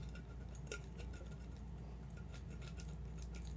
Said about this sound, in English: Oh, hold on. Let me get my keys out. If you ever get one of these, you gotta scratch the rose off.